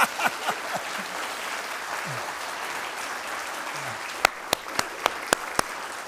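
A church audience applauds its president in a steady, dense wash of clapping that holds for several seconds, with a handful of sharp, louder individual claps popping out toward the end.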